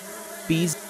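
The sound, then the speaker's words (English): A bee buzzes for a brief moment, a steady droning hum that swells in and cuts off, over a quiet background hum. “There's a bee.”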